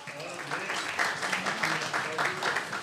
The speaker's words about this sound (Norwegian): Ja, det er med stor glede som jeg vil si at du er hjertelig velkommen til camp meeting for hele familien her på Lista fra 8. til 24. juli. Skal vi klappe for det?